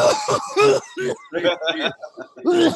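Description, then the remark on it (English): A voice imitates a violent fit of coughing from a sparring round, a rapid string of harsh, choking hacks and gasps repeating, loud and uneven, with no clear words spoken. “And when I tell you coughing, it was like this.”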